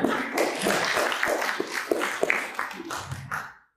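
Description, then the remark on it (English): An audience breaks into steady applause, many hands clapping in a dense, crackling wash for a few seconds before it thins out and stops. “Let's give this guy a round of applause.”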